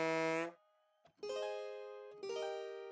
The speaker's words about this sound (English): The goose honked happily all the way back home.